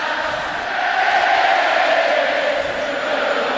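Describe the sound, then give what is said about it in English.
A large stadium crowd of Yankee fans chants "overrated" at the Seattle Mariners, roaring together in a dense, sustained wash of voices, holding steady and loud throughout with a slight swell in the middle. “That's when all those great chants began echoing all over the place with overrated.”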